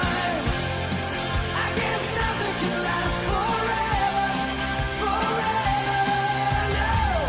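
A man yells loudly and continuously over a second voice, with the two overlapping voices forming a dense, strained wall of shouting that runs for several seconds.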